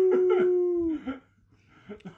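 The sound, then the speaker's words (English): A person imitates a wolf with one short, sustained howl that holds steady for about a second and then drops off, followed by brief quieter vocal sounds. “Calling on my wolves.”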